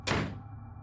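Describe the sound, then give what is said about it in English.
A single heavy door slams shut with a sharp, booming impact as a daughter storms to her room, followed by a brief low rumble as it settles. No voices are present. “The daughter stood over the elderly woman with a menacing glare before storming to her room and slamming the door.”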